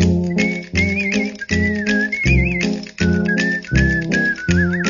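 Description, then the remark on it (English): A bright song driven by rapid, rhythmic clacking bones percussion, with a wavering whistled melody riding on top and a steady organ underneath; no one speaks. “If he can't work the clackers, the bones just right, certainly could make it on a synthesizer and sound just like it”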